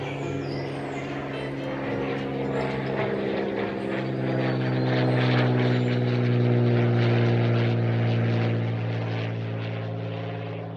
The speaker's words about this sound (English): Oh no! We just missed our plane and the last boat took off 2 days ago.